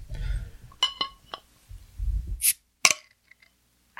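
A beer bottle is pried open with a cartoonishly big bottle opener, almost the size of a bomber bottle: low fumbling thumps, then a couple of sharp metallic clinks and a quick pop as the cap comes free, followed by quiet.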